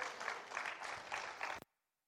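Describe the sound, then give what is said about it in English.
An audience claps together in a dense, steady burst of applause that swells slightly in waves, then cuts off abruptly after about a second and a half, leaving silence. “Come on, you can surely clap better than that.”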